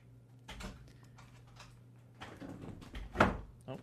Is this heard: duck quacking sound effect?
no